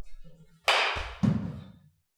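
A 2021 Voodoo baseball bat with an alloy barrel strikes a ball with a sharp, bright crack, then a second, duller and lower impact follows about half a second later before fading out. No one speaks.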